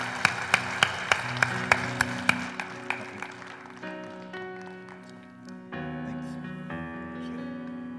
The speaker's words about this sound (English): ¿Puedes darle un aplauso a Jesús? Can we give the Lord an applause? La gloria es para Dios. Give God the glory.